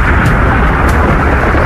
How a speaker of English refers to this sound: triggering a massive avalanche. Here, pop, pop, pop, the whole bowl lets go. And it sounds like a freight train running right over.